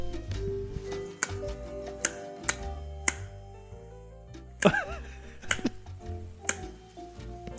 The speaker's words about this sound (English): Slapping a slice of ham off a table.